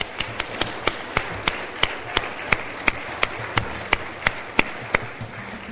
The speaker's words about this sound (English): Can you come to the centre of the stage, nativity? Because I thought they did. We need a clap for them, by the way. Should we have a clap?